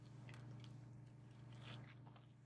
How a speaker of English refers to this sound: Excuse me, I took a sip of water.